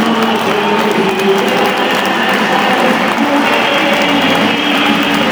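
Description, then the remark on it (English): A thin stadium crowd at a night football match applauds steadily as the teams come out, a wash of scattered clapping and murmuring from the stands that holds at an even level throughout, with no clear voices standing out. “Bit of a sparse crowd tonight.”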